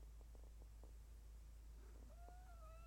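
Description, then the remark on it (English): A cat meows faintly in the background, a drawn-out tonal cry near the end, after a few soft scattered taps over a steady low hum. “Can you stop making noise back there?”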